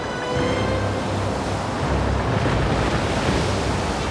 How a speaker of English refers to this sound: Captain! Wind's blowing strong behind us! There's a storm coming!